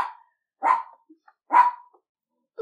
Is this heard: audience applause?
no